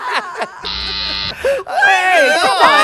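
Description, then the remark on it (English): A harsh, flat game show buzzer blares for about half a second, loud, with lively chatter and excited voices right before and after it. “You were very buzzer happy.”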